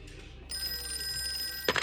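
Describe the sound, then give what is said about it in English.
A telephone bell at a sheriff's station rings with a steady, sustained, clear trill, ending in a brief brighter burst; an incoming call from a retired heavy equipment operator. No voices are present. “And then a phone call from a retired heavy equipment operator confirmed the truck driver's story.”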